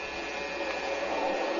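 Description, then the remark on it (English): A school's electric night bell rings continuously, a steady, harsh metallic buzzing rattle that holds the same loud level throughout, with no voices. “Ring the night bell”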